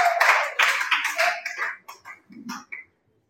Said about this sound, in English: We're going to hand over one of our COVID babies to the Lord. It's in the bed. Let's clap to the Lord.